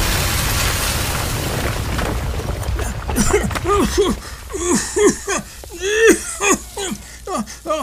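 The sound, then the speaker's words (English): A massive explosion blasting a gaping hole in a wall opens with a deep, roaring rumble that fills the first few seconds, then fades as a person begins talking over the dying noise. “ladies and gentlemen, a massive explosion is of the gaping hole in the wall.”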